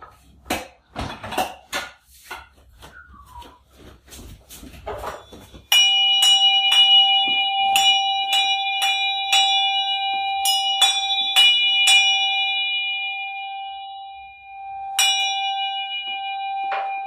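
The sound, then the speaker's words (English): A few scattered clicks and knocks, then a ritual bell rings out during a ceremony with a bright, sustained metallic tone, struck repeatedly in irregular succession with lingering overtones, then struck once more near the end. “Let me just do the rings first.”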